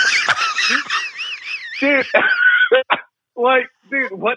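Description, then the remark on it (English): A loud, cartoonish rooster squawks and clucks as a rooster is brought into court, starting with a long, warbling, voice-like stretch, then breaking into several short, choppy bursts separated by brief pauses. “They're actually bringing a rooster to court. And they bring in... Holy sh... They bring in Foghorn Leghorn.”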